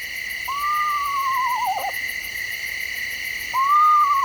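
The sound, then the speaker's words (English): An eastern screech owl gives a descending, quavering whinny call, followed by the start of another after a pause, over a steady background of insect or frog trilling; recorded by Lang Elliott of Nature Sound Studios. “You might say the eastern screech owl lives up to its name, with its range of calls, including the whinny.”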